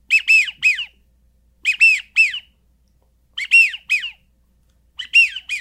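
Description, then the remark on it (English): A widgeon duck call whistle, a single device on a lanyard that also makes a teal call, blows four bursts of high, wheezy whistled notes, two or three quick peeps each, separated by short pauses and imitating the wild duck's call. No one speaks. “That's a perfect widgeon. So I got two ducks out of one device.”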